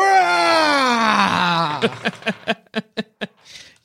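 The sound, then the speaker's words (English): A man lets out a loud, drawn-out bellowing scream that slides downward in pitch, then breaks into a string of short, rhythmic gasping bursts before fading out. “You're not sure what's happening inside until you hear … bellowing a scream.”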